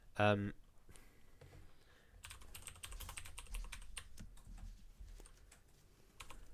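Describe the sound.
Rapid, irregular clicking of keys on a computer keyboard runs steadily for several seconds after a brief loud burst at the start, moderately loud, with faint background voices.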